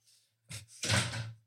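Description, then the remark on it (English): A door swings and shuts: a brief knock of movement, then a fuller, rattling thud as it closes, with no voices around it. “Please close the door behind you.”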